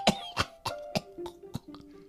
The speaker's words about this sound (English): He gave the burning branch to Hypnotizer, and then he collapsed on the ground, coughing.